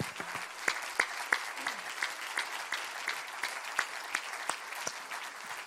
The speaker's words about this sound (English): would you give everyone who received a Second Mile Spirit Award an applause right now?